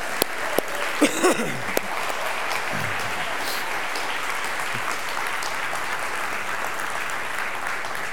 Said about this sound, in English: And so if you guys would, we are not, yes, you can clap. I saw, yes. Thank you.